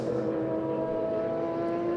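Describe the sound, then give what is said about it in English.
Loud, steady engine drone of racing cars, including two Fords, going past in the Acura Sports Car Challenge at Mid-Ohio Sports Car Course, with strong sustained tones, a continuous roar that holds level without a clear rise and fall of individual pass-bys, no voices. “And there's two Fords between first and second as they go through past us, but everyone else is back in the game now,”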